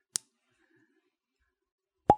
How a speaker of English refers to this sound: Is this a cork or is this a cap? It's a cork. It's a nice sound. I'm going to do that again by the mic.